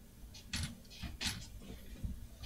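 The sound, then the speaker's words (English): A chair creaks and clicks as it settles, a few short rustling, scraping bursts over a low rumble, moderately loud, with no talking. “It was like, it's gotta be one of the chairs. Like, after it settles.”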